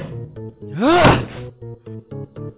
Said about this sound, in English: The chair just bounced off the window. I've gotta try again. Again! It's not working!